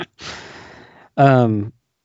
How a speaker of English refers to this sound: I need a minute to calm and do some Lamaze breathing.